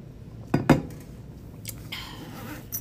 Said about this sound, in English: I'm gonna take a sip of my water and my hydro.